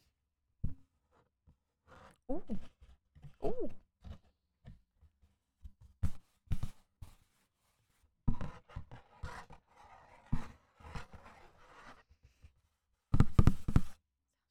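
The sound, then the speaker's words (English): Crinkling and rubbing of paper under hands, with scattered taps and brushing strokes in uneven bursts, a louder crumpling flurry near the end, and a brief murmured exclamation. “Let's touch some paper.”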